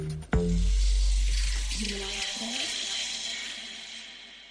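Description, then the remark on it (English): A sharp clink, then a steady pour of I Love Michelada mix into a glass of beer, its bright fizzing hiss filling the moment and slowly easing off as the bubbles settle. “Okay, so I'm going to pour my I Love Michelada into my beer.”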